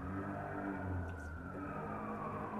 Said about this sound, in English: Are you guys hearing this? I love this city, but I live in a war zone. Ugh. Definitely time for a beer until all of these sirens go by.